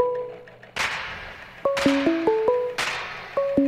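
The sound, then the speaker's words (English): A phone ringtone for an incoming call plays a short electronic melody of stepped tones, repeating with sharp percussive hits roughly every second. It is fairly loud, with no voices. “Oh, I'm getting a phone call.”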